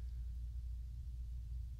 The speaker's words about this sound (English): It started raining like shit out, so I know you like thunderstorm.